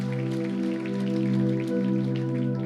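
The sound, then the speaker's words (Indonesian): An audience claps for God during a church service, a dense crackling patter of many hands that holds at an even level throughout, with a sustained keyboard chord droning underneath and no one speaking. “Bolehkan tepuk tangan buat Tuhan.”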